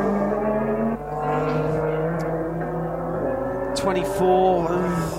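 A Conrad Racing car in blue livery crosses the lap line during a race with 31 minutes to go, its engine droning steadily with a strong harmonic whine, its pitch bending as the car sweeps past near the end, over a constant background rumble.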